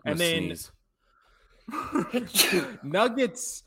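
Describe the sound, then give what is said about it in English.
A single loud sneeze from a man bursts out, then after a short pause a man's voice follows with breathy, strained vocal sounds. “before he started sneezing”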